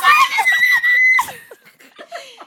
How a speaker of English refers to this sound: Yo, everybody's gonna have to skip this whole screeching period. Facts. Like, my ears.